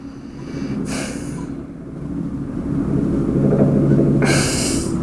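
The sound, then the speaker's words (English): A steady, low throbbing rumble of many helicopters flying outside, swelling slightly in the second half, with two short breathy noise bursts on top and no talking. “So many choppers outside right now.”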